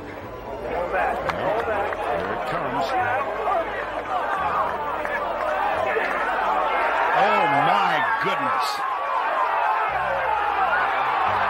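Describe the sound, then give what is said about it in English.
A large Sunday golf tournament crowd roars and cheers continuously, a dense, loud wall of many overlapping voices and shouts that swells slightly toward the end. “The roar of the Sunday crowd.”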